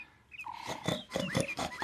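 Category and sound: animal, pig oinking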